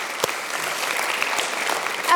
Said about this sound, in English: I'm sure that you realise how tremendously that was just played, both pieces. Can we give Philip another huge round of applause?